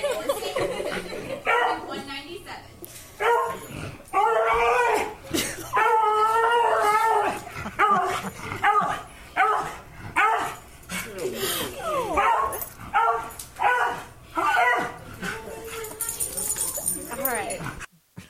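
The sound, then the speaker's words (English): A dog just out of urgent veterinary care howls and yips in long, wavering cries mixed with sharp barks, loud, while people talk over the noise. “That is all the dog, apparently.”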